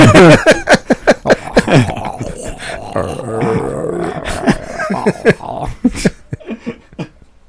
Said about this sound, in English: Your stomach's like, I want to say something. I had a creepy burp. Silent but deadly.